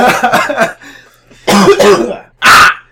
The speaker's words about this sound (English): I keep coughing.